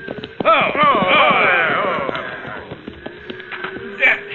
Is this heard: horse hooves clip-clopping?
yes